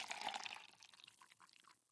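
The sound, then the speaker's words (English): Coffee for breakfast pours into a cup in a short, splashy stream, bright and bubbly at first, then thinning and tapering off over about two seconds. Fairly quiet, with no voices. “Make a balanced breakfast, coffee and a spoonful of ice cream.”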